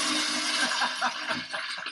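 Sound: toilet flushing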